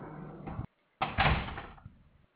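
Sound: door opening and closing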